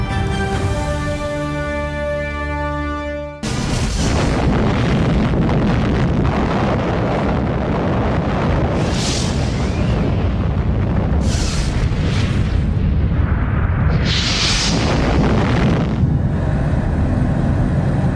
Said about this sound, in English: That was the explosion of the atomic bomb over Hiroshima, Japan, 1945.